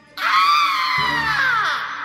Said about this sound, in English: The witch screamed.